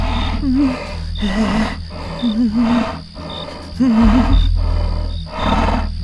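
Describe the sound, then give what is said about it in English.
A lion growls in a steady rhythm, about six deep, rasping bursts roughly a second apart, loud, each like a heavy rumbling breath, with mist from its mouth as it bends over and smells a person in a camp, with no talking. “The lion bent over to Abu Lahab and smelled him.”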